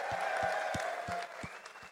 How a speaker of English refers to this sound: A round of applause one more time for Dan Joyce, Cardiff.